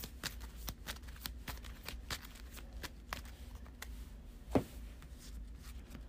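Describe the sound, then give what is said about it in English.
A deck of cards being shuffled during a card game, a quiet run of crisp, papery riffles and flicks in an uneven rhythm, with one sharper snap near the end and no talking. “So I'll put the Cable Arrow on there, shuffle everything back.”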